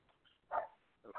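A dog gives two short, muffled barks about half a second apart, fairly quiet, with no voices around them.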